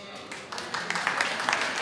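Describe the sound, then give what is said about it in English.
An audience of women clapping: a dense, crackling patter of many hands that swells and thickens over two seconds, with a faint murmur of voices mixed underneath. “That's all the ladies clapping.”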